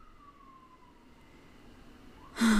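A fire truck siren wails faintly, its pitch sliding slowly downward before starting to climb again, then a sudden loud burst of rushing noise cuts in at the end.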